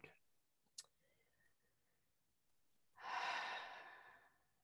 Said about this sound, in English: And we're just going to take 3 big deep breaths in through the nose and out through the mouth.